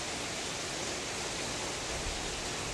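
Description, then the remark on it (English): A steady, dense hiss of heavy rain pouring down, loud and unbroken for the whole stretch, with no voices or other sounds over it. “You know, I would love to see it pour down like this on Afghanistan and drive the people back, not be able to do anything because of the rain.”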